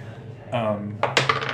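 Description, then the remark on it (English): A die rolls off a table and clatters and bounces on a hard surface in a burst of quick, sharp clicks that settle into lighter rattles. A short voiced sound comes just before. “I rolled off the table.”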